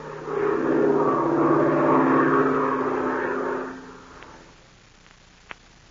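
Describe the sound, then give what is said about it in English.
A loud, droning airplane engine roars steadily for several seconds with a strained, laboring tone as the plane climbs at a steep angle, then fades away, leaving near silence broken by a single brief click. “The engine is laboring as the plane climbs at a steep angle.”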